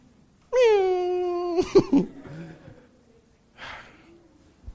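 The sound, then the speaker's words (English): A human voice imitates a cat's meow: one long, loud mew with a sliding then steady pitch, followed by a few short breathy noises and a brief airy puff. “A dog, imagine your dog mewing.”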